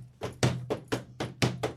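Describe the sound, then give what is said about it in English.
A body being thrown around inside a toll booth thuds repeatedly against its walls: about eight dull, heavy bangs in quick, slightly uneven succession over a steady low hum, with no talking. “As he's just hitting every wall of the toll booth, getting thrown around in there.”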